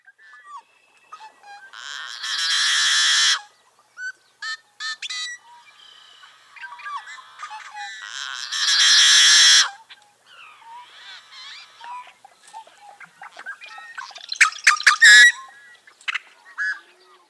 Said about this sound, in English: First up is the yellow-headed blackbird. This is our one Western specialty in this episode. What do you think of this song?